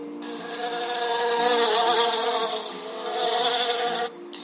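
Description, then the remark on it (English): A bumblebee caught in a spider's web, its wings stuck, buzzes anxiously in a loud, continuous drone with a wavering pitch that swells and dips, cutting off abruptly near the end. “A nearby rabbit, hearing the bee's anxious buzz, ran to see what the fuss was about.”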